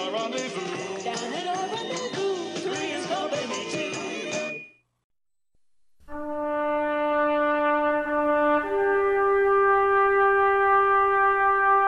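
A brief burst of busy music stops, and after a short silence a bugle plays taps to mark a death: two long, loud, held brass notes, the second pitched higher, with no talking.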